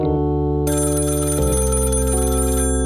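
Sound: telephone ringing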